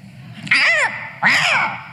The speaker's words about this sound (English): Don't you always feel like crows are talking about you?